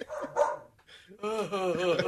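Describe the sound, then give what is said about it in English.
A couple of short, sharp dog barks, followed by a longer, drawn-out whining yelp that wavers in pitch before cutting off. “Doggy!”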